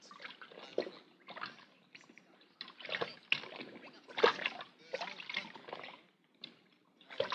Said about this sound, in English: But we couldn't detect anything that would trigger the thing, so we'll put it in the water bucket here. Did you put wetting agent in the water? Yeah. It'll soak through the wrapping quicker and then throw anything else inside that much faster.